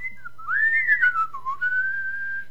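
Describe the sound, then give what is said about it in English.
A person whistles a short, wavering tune that slides up and down in pitch before settling on a steady held note, clear, with no talking. “You think you're the greatest whistler ever.”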